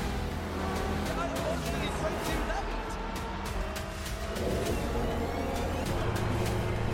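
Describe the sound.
A Ferrari race car engine in a racing video game trailer roars steadily and loudly for several seconds, a dense continuous drone with rapid clicking textures, while muffled voices sit underneath.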